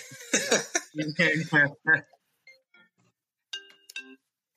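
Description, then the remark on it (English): A short electronic phone ring, a bright tonal chirp, sounds briefly after a burst of human vocal noise. It is moderately loud, then fades into quiet. “The phone.”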